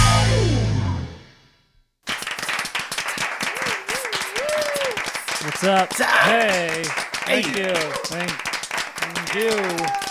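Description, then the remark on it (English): A brief musical sting fades to a moment of silence, then a crowd breaks into sustained, dense hand clapping, with voices whooping and calling out over the applause. “Good crowd every time. Slapping hands.”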